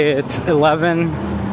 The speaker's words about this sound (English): So there's a lot of traffic right now walking back home because there was this big trailer truck that was moving like really big construction equipment, and it almost got stuck in the cables.